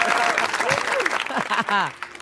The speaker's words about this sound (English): Clap it up. We can use this in other places.